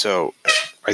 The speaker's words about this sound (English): darn cat. Sorry for the noise.